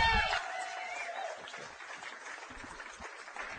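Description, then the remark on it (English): A crowd applauds and cheers steadily for a few seconds for Alan Wright's 600 games, a dense wash of clapping that tapers slightly after an initially louder start. “Alan Wright, give him a cheer, ladies and gentlemen.”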